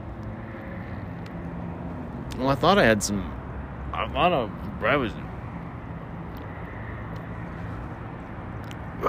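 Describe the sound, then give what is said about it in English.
A steady low rumble of traffic runs throughout, with cars passing and doing U-turns, while a man speaks briefly over the noise in the middle. “No, okay, I guess cars are doing U-turns. I guess cars are trying to get close.”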